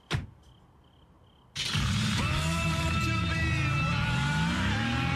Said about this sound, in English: Car commercial. Nice rides. Still looking good.